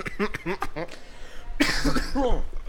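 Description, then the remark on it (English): Someone talks briefly, then gives a loud, rough cough that runs into a couple of strained, voiced bursts, like a cough mixed with a chuckle. “Ugh, cough happy.”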